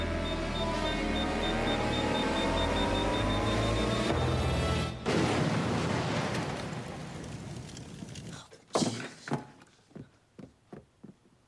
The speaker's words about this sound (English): And soon there's an explosion from the microwave.